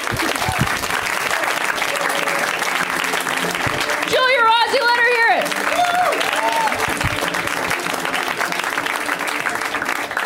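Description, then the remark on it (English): At the end of a stand-up comedy set, the audience gives steady, fairly subdued half claps for about ten seconds. A single voice briefly calls out over the clapping partway through. “Y'all in those half claps.”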